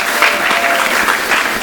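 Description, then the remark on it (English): An audience at Skylight Books, a local bookstore, applauds and cheers for bookstores with steady, dense clapping and some cheering mixed in, loud and sustained throughout with no break. “Big cheer for bookstores.”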